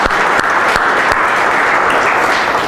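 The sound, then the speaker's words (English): A crowd applauds steadily, a dense wash of many hands clapping, with a few sharper individual claps standing out near the start. “Round of applause for these guys.”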